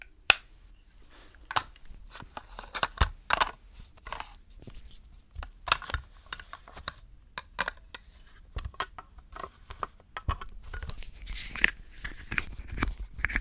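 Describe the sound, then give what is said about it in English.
Makeup ASMR sounds made by someone doing their own makeup: a steady scatter of crisp clicks, light taps and crinkly scratching, quiet and irregular, with no one talking throughout. “So that was me doing makeup ASMR.”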